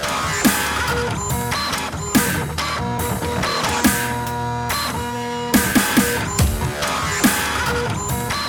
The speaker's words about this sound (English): Somebody needs to fix this printer.